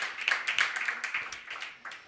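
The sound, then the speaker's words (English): An audience at an open mic night applauds the evening's lineup of readers steadily, many overlapping hand claps blending into a dense, crackling wash that holds at a moderate level without pause. “Yeah, give them all a round of applause.”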